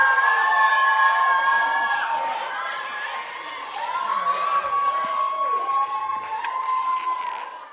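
An audience of women cheers loudly and steadily for contestants trying to blow up balloons, with high sustained shouts and whoops rising over a dense wash of crowd noise for the whole stretch, energetic.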